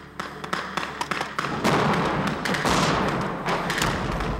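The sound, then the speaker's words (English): A quick series of sharp bangs gives way to a loud, sustained roaring rumble of special-effects explosions during a training exercise simulating a terrorist attack, with no voices heard. “During the exercise, the noise was deafening. These explosions give us the feel, the blast, the heat.”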